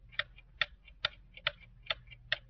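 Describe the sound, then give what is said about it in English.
A clock ticks steadily with an alternating tick-tock rhythm, crisp clicks about twice a second over a faint low hum. Fairly quiet, with no voices. “In the medium-sized clocks, I used tick-tocks.”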